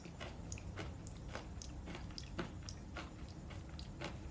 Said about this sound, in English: you're always munching on something every drive. Oh, well, obviously.